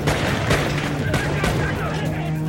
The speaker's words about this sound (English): A bulletproof limousine that saved the president. All of a sudden, gunshots ring out.